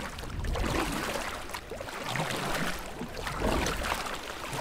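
A boat being rowed through water, with continuous sloshing and splashing that swells and eases in a loose rhythm, like oar strokes, with no voices.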